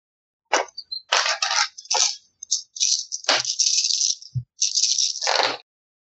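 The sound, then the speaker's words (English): Dice clatter and rattle in a series of bright, clicking bursts, as if shaken and tumbled across a hard surface, with a brief pause between rolls; no voices are present. “All right, I might have to get new dice too.”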